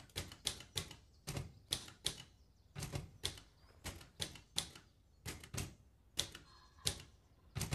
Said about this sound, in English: Right, so we come up on a little girl or a young teen typing. She's an aspiring novelist.